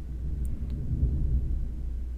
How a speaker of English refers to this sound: Again, sorry for the thunder.